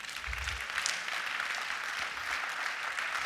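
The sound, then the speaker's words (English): A crowd applauds steadily, a dense wash of many hands clapping at once, sustained and even throughout without any voices standing out. “I thought you clapped for me.”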